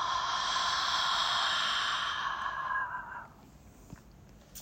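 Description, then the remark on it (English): A deep, slow breath taken during a guided breathing exercise, with a long airy rush of air that gradually fades into quiet after about three seconds. No talking. “One more breath. Inhaling deeply. And exhale.”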